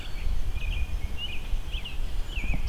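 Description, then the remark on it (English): An American robin sings a few short, faint caroling phrases at a steady pace, its mid-high whistled notes rising and falling over a constant low rumble. “American robin singing”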